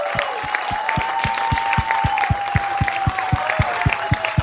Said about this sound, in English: Would you start clapping right now for the hilarious Moses Storm, everybody? Moses!